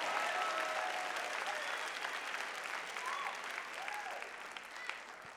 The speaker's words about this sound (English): If you believe it, clap your hands and say, I know that's right.